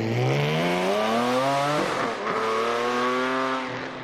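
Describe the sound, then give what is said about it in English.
Three car engines, a 4-cylinder, an 8-cylinder and a 12-cylinder, rev one after another, each a loud, steadily climbing drone, the later ones smoother and richer in tone, with no talking. “Here's a 4-cylinder engine versus an 8-cylinder engine versus a 12-cylinder engine.”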